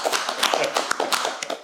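Audience applause: many hands clapping together in a dense, steady patter of sharp claps, fairly loud throughout and without voices over it.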